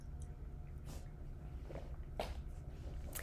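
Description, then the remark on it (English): Someone drinks water: a few soft, irregular gulps and slurps over a low, steady background hum, with no talking. “Hold on a second, let me drink some water.”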